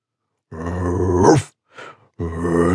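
A human voice imitates a dog's low, rumbling growl, sustained for about a second, then a short breathy intake before the growl starts again, fairly loud and alone.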